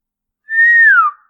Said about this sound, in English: I whistled.